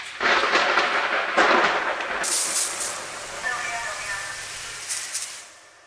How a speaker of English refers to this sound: One time in the grocery store produce section, the lights started blinking, and a thunder sound effect played to signal that the vegetable misters were about to turn on.